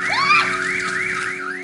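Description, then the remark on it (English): The alarm on Tonya's truck, set off by the media, blares with a rapid, rising-and-falling electronic warble, loud, sounding continuously over a low steady hum with no voices. “The media would set off my alarm on my truck.”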